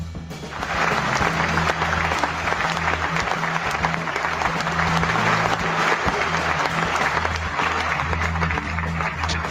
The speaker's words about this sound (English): I was just letting the crowd applaud for a second. I was just letting them applaud for a second.